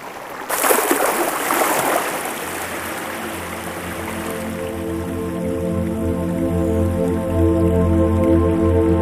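A slow river current flows gently and steadily with soft drips, a brief louder splash of water near the start, then a low sustained tonal hum settling underneath the continuous current.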